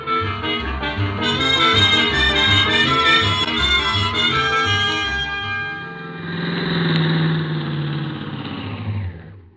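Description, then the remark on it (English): A car engine cranks with a rhythmic churning, catches, and then runs and revs at a steady mid-pitched drone before settling into a lower idle, with no voices. “Start the car, Miss Brooks.”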